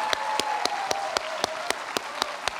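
A round of applause thanking a ministry group before they leave: a steady wash of many hands clapping, with sharp, evenly spaced claps cutting through roughly four times a second and a faint sustained tone underneath.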